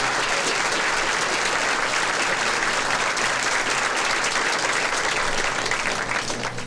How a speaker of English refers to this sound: So what do you say we give her a nice round of applause?